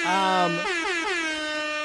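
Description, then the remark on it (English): A loud, blaring air horn sounds for about two seconds, its steady brassy tone lurching to a new pitch partway through and then holding, alone with no talking over it. “I'll air horn for that.”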